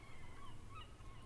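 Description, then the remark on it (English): A goose honks a few times in quick, uneven succession, nasal and fairly soft, over a steady low rumble of background noise, with no talking. “And now, Goose!”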